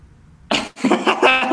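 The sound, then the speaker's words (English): A short, sharp cough bursts out, followed after a brief pause by a longer, rougher run of throaty coughing, fairly loud with nothing else around it. “I thought you really were going to cough.”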